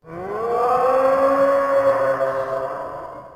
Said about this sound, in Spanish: La sirena llamó. El monstruo respondió.